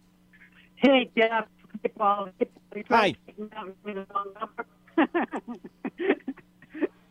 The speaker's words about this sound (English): we're having some trouble there with …'s line. I heard him chuckle, but the rest of his call was breaking up